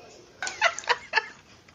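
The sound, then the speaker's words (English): A voice imitates bird calls with four short, chirpy, clucking bursts in quick succession, moderately loud against a quiet background. “Nature. And the birds are like...”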